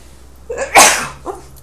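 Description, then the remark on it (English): A single sharp human sneeze, with a short breathy intake before it and a faint vocal sound after, otherwise quiet. “I'm going to sneeze, excuse me.”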